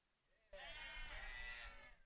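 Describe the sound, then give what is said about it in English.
A single long, loud moo from a cow, drawn out for about a second and a half, with a faint lead-in just before it. No one is talking. “That sounds like cows mooing.”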